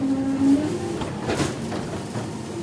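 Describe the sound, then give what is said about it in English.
A garbage truck's machinery in an alley lifts and empties bins two at a time and crushes the garbage: a steady low hydraulic whine over a grinding mechanical rumble, with a brief clattering burst midway and no voices. “The truck then lifts and empties the bins, two at a time, and crushes the garbage.”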